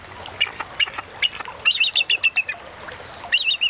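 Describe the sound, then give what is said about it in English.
A bald eagle, the national symbol of the United States, gives a series of high, piercing chirps and piping calls, coming in quick staccato bursts with short pauses, clear over faint background noise. “We leave you this week with the calls of our national symbol.”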